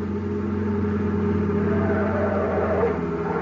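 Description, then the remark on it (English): A car engine roars steadily and loudly throughout, a continuous low droning hum with a slight swell near the end, as a car speeds up a highway at about 90. No one speaks. “car coming up that highway now.”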